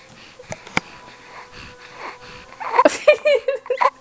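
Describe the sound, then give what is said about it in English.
Raspy breathing noises into the microphone, wheezy and uneven, building into louder squeaky, whimpering bursts toward the end with no clear words. “That's all you got to say to the mic is a bunch of Pikachu breathing techniques.”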